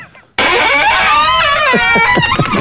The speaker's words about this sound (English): Oh, and the very terrifying door opening.